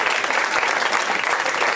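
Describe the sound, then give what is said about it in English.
An audience at a stand-up comedy show applauding a comedian steadily, dense overlapping claps at a constant loud level throughout, with no voices standing out. “Clap for that man, he's a gem.”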